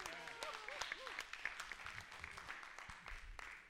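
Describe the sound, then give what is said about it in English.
An audience breaks into steady, dense applause, many hands clapping at once in a continuous patter, with scattered voices calling out over it throughout. “Can that magnify that one clap?”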